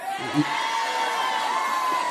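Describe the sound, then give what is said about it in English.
A crowd at a live show cheers and whoops in a steady, dense roar that holds at an even loudness throughout, with a brief burst of shouting near the start and no clear speech. “This crowd doesn't want you to go away.”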